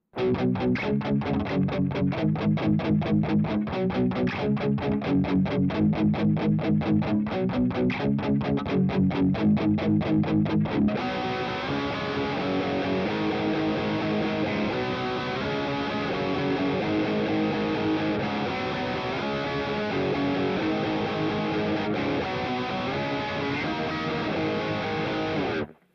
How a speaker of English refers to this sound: push the input of the guitar signal just a bit harder before it hits the Rev to add some natural sounding compression